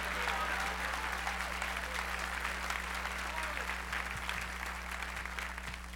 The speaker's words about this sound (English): Come on, clap your hands and shout hallelujah.